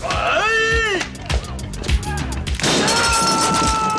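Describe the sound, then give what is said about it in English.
In a movie scene, a sharp yell gives way to a burst of loud cracking and smashing as the character Thunder shatters a Tech Nine submachine gun, then a bright, ringing clatter of shattering debris that carries on loud to the end. “I really like Thunder bringing the noise and shattering the Tech Nine.”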